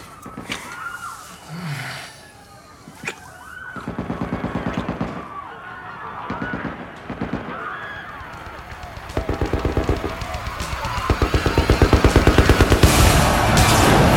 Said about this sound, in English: I particularly loved, before we had the montage, you know, we have every week of how society's getting more dystopic, how the gunshots kind of bled into the kick drum, starting the montage music.